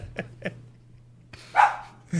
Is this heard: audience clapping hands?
no